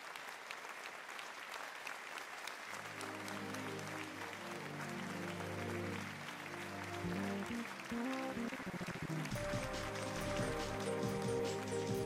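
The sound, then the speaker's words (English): Sustained crowd applause at Dr. Scorpion Blood's self-help seminar extravaganza fills the whole stretch, a dense steady patter of many hands clapping, while low musical tones rise underneath and swell toward the end. “Everyone give yourselves a round of applause.”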